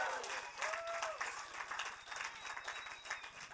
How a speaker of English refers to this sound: When he gets up and says, well, it's offering time, I want this place to practice roaring and shouting and clapping because that's your breakthrough. Okay? Let's practice right now.